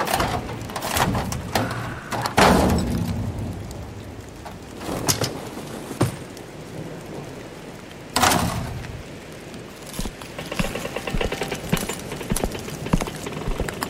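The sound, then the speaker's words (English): A bent car trunk is forced open in the rain to get a medical kit: several loud metallic bangs and wrenching thuds at irregular intervals, with scraping, rattling clatter between them and no voices. “Well, the noise, I had to force the trunk open. It was a little bent.”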